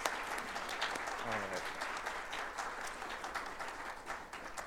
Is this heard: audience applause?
yes